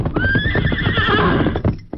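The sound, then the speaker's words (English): A horse, Silver, lets out a loud, shrill whinny over quick, rhythmic galloping hoofbeats as it approaches fast with an empty saddle and no rider, continuous through the short moment, ending with a few final clops. “Less than an hour later at the Lone Ranger's camp, when Tonto heard the approach of familiar hoofbeats.”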